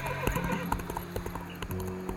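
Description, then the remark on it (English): A horse, a mare that has broken out of her harness, whinnies while her hooves clip-clop in a steady rhythm, the neigh rising clearly over the repeated hoofbeats. “I will be back, and I will take more than just a horse.”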